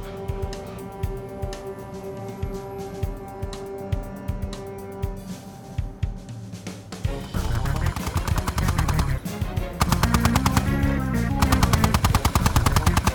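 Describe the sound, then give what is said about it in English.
Rapid bursts of machine gun fire from a gun on a tripod set up on a vehicle's back hatch rattle continuously, starting as sharp repeated cracks and swelling into a loud, dense barrage of rapid shots in the second half. No one speaks. “Die, all of you die. You're moving around too much, I'm not hitting them.”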